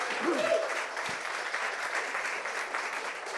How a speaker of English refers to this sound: So everyone give him a round of applause.